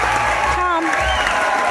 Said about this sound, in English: Do you see that crowd going nuts?